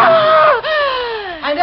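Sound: woman screaming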